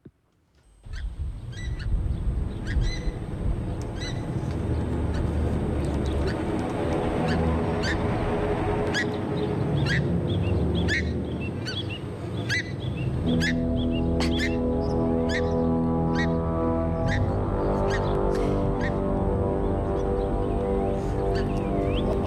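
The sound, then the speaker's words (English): Pukeko call loudly and continuously, a dense chorus of harsh, honking screeches and sharp squawks repeating over a steady din, with no talking; breeding pukeko at a family's property in Auckland. “what really struck me when you had the headline, Pukeko Geddon, Auckland family terrorised by breeding birds. And then this was the soundtrack.”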